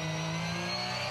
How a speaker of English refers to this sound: Right now, Matt Campbell wishes he was in a Porsche Cayenne and not in this 911. Let's have a listen to the flat six engine as he comes off the elbow.